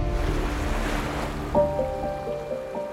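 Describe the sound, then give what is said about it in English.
Gentle waves wash and lap steadily against a smooth, rocky beach on the Mesogeios (Mediterranean) Sea at dawn, a soft continuous surf with no voices, while sustained musical tones rise in underneath about halfway through. “Gentle waves lapped upon the smooth, rocky beach.”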